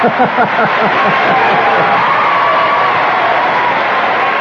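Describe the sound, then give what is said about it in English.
A large crowd at a field cheers loudly and continuously as seven groundskeepers push a car that would not start off the field, a dense roar of voices with whoops rising above it, sustained at full volume throughout. “At that point, there was a big cheer. Let's hear that cheer.”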